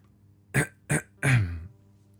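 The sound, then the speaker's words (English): Two short, sharp coughs followed by a longer, rougher one that trails off like a throat being cleared, fairly loud, with no talking around them. “Thor stepped forward with Loki by his side, and as he reached towards that well-worn familiar shaft, he heard a cough from behind him.”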